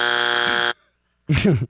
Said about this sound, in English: Where can we get the buzzer? Oh, he just buzzered